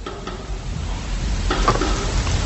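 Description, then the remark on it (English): A real human fingernail knocks lightly against a hard side, making a couple of small taps around the middle, set against a steady hiss of background noise. No one speaks. “Oh, I'm knocking it off the side here, listen.”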